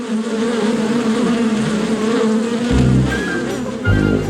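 A dense, steady drone of many bees buzzing together inside a hive, fairly loud, with a few deeper low thumps near the end and no voices.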